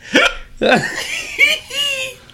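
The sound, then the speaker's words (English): A hiccuping laugh: two sharp gasping hiccup bursts followed by squeaky, high-pitched laughing notes, fairly loud, with no talking. “There's going to be a hiccup laugh drop, I'm sure.”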